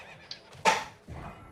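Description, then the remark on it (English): A short, bright horse neigh bursts out loud, followed by a low rumbling shuffle, like a video game horse whinnying during play as the player tries to do horse parkour. “I was trying to do some horse parkour.”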